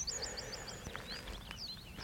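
A reed bunting calls from somewhere in bracken on open moorland in mid-June: a quick run of short, high, metallic chinking notes, then a few scattered chirps over a soft, steady outdoor background.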